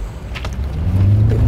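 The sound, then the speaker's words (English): A car driving on the way to a viewing, heard as a steady low engine rumble with a droning hum that rises and grows slightly louder toward the end, with no voices. “Oh, geez, that's my car. You're driving around on that.”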